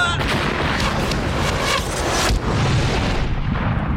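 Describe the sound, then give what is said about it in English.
A loud explosion blast of a massive metal keyhole fills the whole clip with a dense, roaring rumble and crackle, briefly dipping partway through before surging again and slowly thinning toward the end. “The massive keyhole exploded, sending dense fragments of his metal slicing through the room.”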